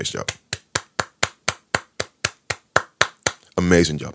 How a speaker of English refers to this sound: Y'all clap your hands for Basau. She did an amazing job.